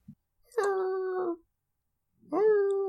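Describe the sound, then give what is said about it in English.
A hurt greyhound howls twice. First comes a steady, drawn-out wail, and after a pause a second howl starts with a rising whine. No one is talking. “The dog is hurt too.”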